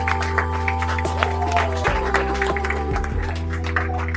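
crowd, audience round of applause

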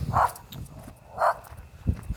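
animal, dogs barking

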